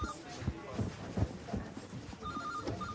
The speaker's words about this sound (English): Could you answer the phone then, please?